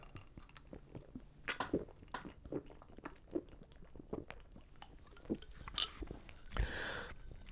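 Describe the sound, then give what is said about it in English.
Someone chewing food with wet, irregular smacking and crunching sounds, a steady run of short bursts, followed near the end by a brief louder clink and a soft rush of noise. “I apologize to those listeners that... have that thing where they hate the sound of people masticating.”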